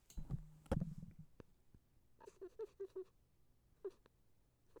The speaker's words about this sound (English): That's him. He didn't make regular cat sounds. That was a strange thing. I was hoping he was just going to purr.